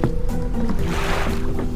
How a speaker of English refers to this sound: Dozens of sailboats rocked up and down on the wavy river.